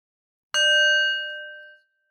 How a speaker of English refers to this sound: Let's begin by attuning with the bell.